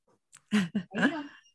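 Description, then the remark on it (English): A female dog yawns: a couple of short breathy huffs, then a drawn-out squeaky whine that rises and fades over about a second, with no talking. “I know, big yawn.”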